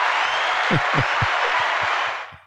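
A steady burst of applause, dense and crackly, with rhythmic lower thumps running through it, holding at an even loudness before fading out over the last half second.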